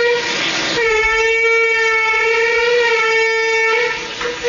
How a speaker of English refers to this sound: At first, I thought it was like a boat. And I was like, damn, son, you got a boat going by your yard. That water's up high. But apparently, it's not a boat. It's just the wind settling into the house or rushing by.